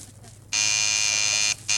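A harsh electric front door buzzer sounds in a long, loud burst of about a second, breaks briefly, then starts again, its steady rasping drone heard alone.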